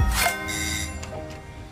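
A bright bicycle bell rings, followed by doorbell chimes, several metallic strikes leaving sustained, shimmering high tones that fade slowly. The sounds are from Deliveroo promotional material, representing the bike bells of its delivery riders and the doorbells of its customers. No voices are heard.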